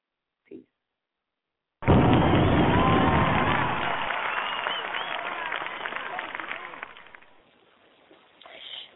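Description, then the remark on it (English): A brief faint thump, then loud audience applause bursts in after a poem at an open mic, mixed with crowd cheering and voices, sustaining for several seconds before gradually fading to scattered noise. “And yeah, I know pain ain't no stranger, so if you recognize mine, then you need to stand up and just clap for you.”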